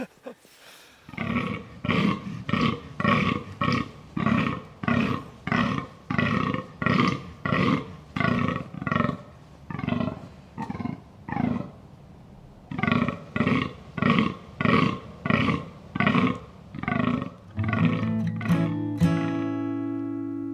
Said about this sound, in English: And I think what we'll do is also play a recording of a full-on deer rut to not disappoint loyal listeners.